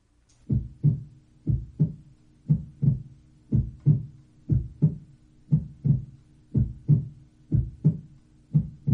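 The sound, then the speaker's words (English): A human heartbeat, with deep, muffled lub-dub pairs of thumps repeating at a slow, steady pace against a faint low hum, with no voices. “Is the human heartbeat really iambic, as often claimed?”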